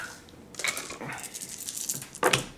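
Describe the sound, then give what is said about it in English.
Small hard rainbow dice clatter and click together in quick, irregular bursts, ending in a louder rattling flurry. No voices are heard. “By gay ones, she means her rainbow dice.”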